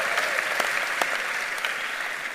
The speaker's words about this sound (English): Let's celebrate all our leaders here with a big clap offering.